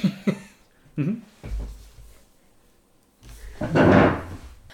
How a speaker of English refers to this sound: Why did you just run into that door? I don't know why. I just have a habit of being attracted to doors.